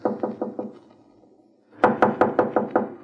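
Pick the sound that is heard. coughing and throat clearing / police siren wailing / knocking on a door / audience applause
knocking on a door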